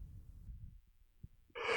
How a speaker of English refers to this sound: Excuse me, I'm yawning.